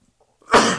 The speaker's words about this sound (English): Woo. Kind of sneeze there